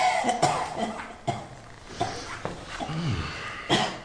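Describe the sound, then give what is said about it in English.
A series of harsh, hacking coughs repeats at irregular intervals, fairly loud, with strained throaty sounds between bursts and no talking. “How long have you had this cough?”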